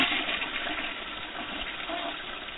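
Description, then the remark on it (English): A toilet flushes in one steady, rushing gush of water that fills the whole moment, fairly loud, with no voices over it. “That's the co-host flushing you.”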